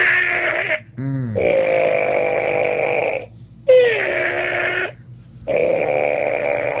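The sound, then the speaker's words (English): A voice imitates the screeching groan of steel as a 40-something-floor hotel sways back and forth during an earthquake aftershock: four long, strained, raspy tones with sliding pitch, separated by brief pauses, loud and sustained. “Oh man, it was just the screeching steel as this 40-something floor hotel sways back and forth from the aftershock.”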